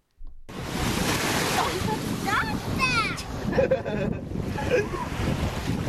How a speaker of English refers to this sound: And if you are listening and not watching, just envision a 4-year-old little girl sitting in the sand being pounded by the waves.